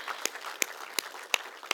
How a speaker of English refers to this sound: Y'all, let's give a round of applause for these guys.